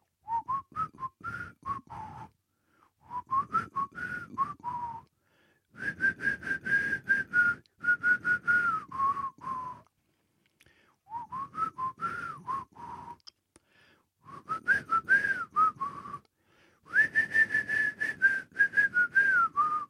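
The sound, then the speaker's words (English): A person whistles the theme tune of the TV show Minder in several phrases separated by short pauses, the pitch gliding and wavering, fairly loud, with no talking. “Whistling's got really bad now.”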